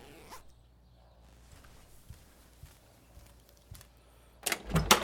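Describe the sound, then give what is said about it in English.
A pants zipper is yanked quickly and loudly near the end as someone puts their pants on, after a few seconds of soft rustling and light, scattered taps. No one speaks. “Put my pants on.”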